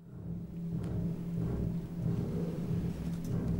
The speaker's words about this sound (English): The aria starts with this sort of very low bass chord, almost like thunder going off, repeated, sort of very low, and the double basses and the piano.